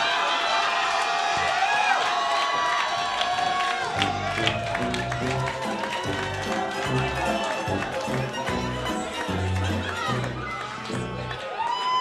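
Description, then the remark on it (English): An audience claps and cheers in a dense, steady wash of sound, with whoops and shouting voices mixed in and a thumping low beat joining about a third of the way through. “Wide right, clap your fucking hands for these two.”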